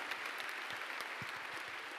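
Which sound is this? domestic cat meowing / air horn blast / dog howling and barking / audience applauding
audience applauding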